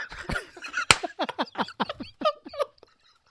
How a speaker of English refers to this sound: Hit this for the clap.